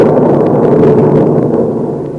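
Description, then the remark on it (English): A loud, deep roll of thunder from an electric storm at White Oaks rumbles steadily for about two seconds, a heavy low growl with faint crackles on top that eases off slightly at the end. No one speaks. “I got to White Oaks in an electric storm, where the skies give me a 21-gun salute.”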